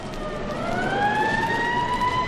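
A police siren wails with a slowly rising pitch, loud and close over a steady rumble of road traffic, as the vehicles sweep past. No one speaks.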